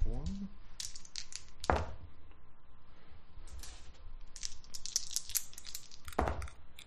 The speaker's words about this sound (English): So I'm going to roll 9 dice, and I need a target number of 5.